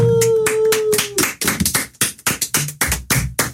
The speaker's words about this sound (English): Lots of clapping today on the air. A lot of clapping. We clap all the time on this show.